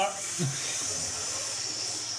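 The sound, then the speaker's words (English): More water is poured onto hot sauna rocks, giving a sharp, steady hiss of steam that holds for a couple of seconds, a broad airy sizzle over a faint low murmur. “pour some more water on the rocks.”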